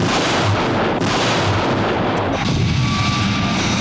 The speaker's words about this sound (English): I do love as well the shots of the Joe's jet in the sky as the explosions are going off around it. And I can't quite tell what it is about these explosions, but they almost look... I don't know, they almost look like they're not on the image as such.